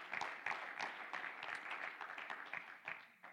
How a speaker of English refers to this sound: Clap your hands unto the Lord tonight. Hallelujah.